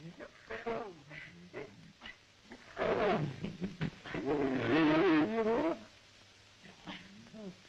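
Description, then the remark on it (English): A young lion growls and roars at a man it is playing with, in loud bursts, a first rough growl followed by a longer, louder roaring stretch, with people talking quietly before and after. “But, but then he starts growling at him.”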